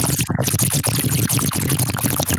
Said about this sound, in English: I don't know why I'm okay with the water bong, but not vape.